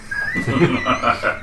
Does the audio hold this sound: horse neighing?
yes